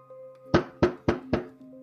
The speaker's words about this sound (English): you all hear a knock on the door of the house. The knock is much louder than what was just created as it echoes through the house, large fists slamming on the door. You believe someone is at your front door.